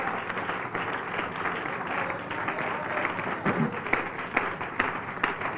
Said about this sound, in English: Why don't you give your pastor and his wife a good hand clap? Hallelujah.